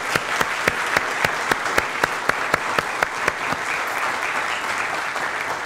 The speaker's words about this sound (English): So well done, and why don't we give them another round of applause?